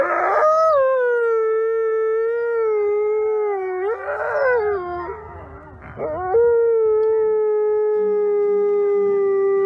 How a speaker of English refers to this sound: Now that's a different kind of song, a she-wolf from South Salem, New York's Wolf Conservation Center.